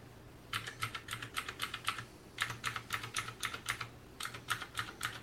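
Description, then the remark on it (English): Crisp, clicky keystrokes on mechanical keyboard switches of different types, including clicky, tactile blue switches, less clicky red switches and brown switches, typed in three quick bursts of rapid, evenly spaced clacks with short pauses between, clear with no voices. “So this first one is the blue switches, so they're clicky and tactile. This is red switches, so they're not too clicky.”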